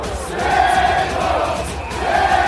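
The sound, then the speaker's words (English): A stadium crowd at Fenway Park roars and yells nonstop, trolling A-Rod as he reports for Fox with screams about Bennifer 2.0; many voices blend into a loud, sustained wall of screaming with drawn-out chant-like tones swelling near the start and end. “It was nonstop trolling as A-Rod tried to report for Fox with fans screaming about Bennifer 2.0.”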